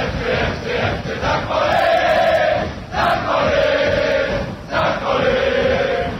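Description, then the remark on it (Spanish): A large crowd of St. Pauli football fans in Germany chants "St. Pauli" in a melodic, repeating phrase, stressing the final "i", loud and sustained, with short dips between each sung line. “es la manera en la que sus gradas gritan St.Pauli. Lo hacen con una manera melódica, acentuando la I al final.”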